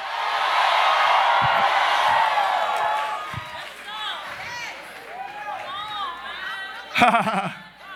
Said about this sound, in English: If you real life blessed, scream in here.